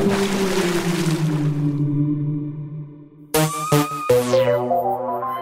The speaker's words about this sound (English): I'm soaring over the Atlantic. Hey, there's my boat.